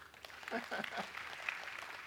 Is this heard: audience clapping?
yes